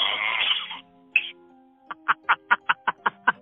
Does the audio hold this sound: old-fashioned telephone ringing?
no